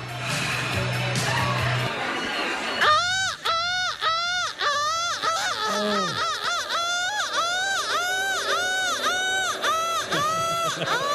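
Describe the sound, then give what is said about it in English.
A large crowd boos loudly, many overlapping voices swelling in wavering, rising-and-falling tones that hold steady for several seconds after a brief, murkier start. “Listen, I've never heard a boo break windows.”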